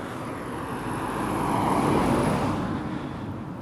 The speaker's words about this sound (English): I mean, if you hear the cars passing by, you can hear the quality of the microphone, right?